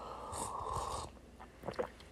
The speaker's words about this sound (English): Well, let me get a sip of this hot beverage.